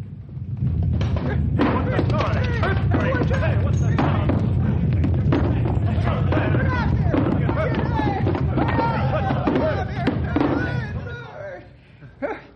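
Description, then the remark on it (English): A loud, continuous earthquake rumble with repeated crashes and thuds of falling debris, sustained for about ten seconds before dying away, with voices audible beneath the din. “Hey, door jammed from Quake.”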